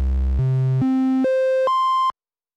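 A mellow triangle-wave tone, a basic waveform from a synthesizer oscillator, plays five steady notes, each jumping higher in pitch about every half second, then cutting off abruptly. It is loud and alone, with no voices.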